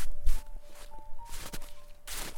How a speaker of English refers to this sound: My feet crunched on the brown grass as I made my way to the goal at the other end of the field.